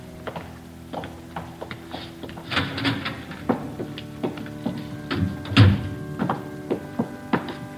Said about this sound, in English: Well, what's that? Climbing stairs to a choir loft.